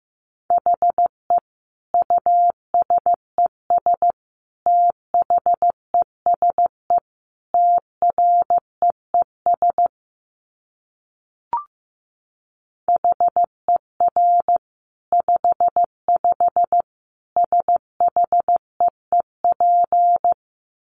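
Morse code sent at about 15 words per minute: a single steady mid-pitched tone keyed into short and long beeps, with a pause partway through broken by a brief click. No voices.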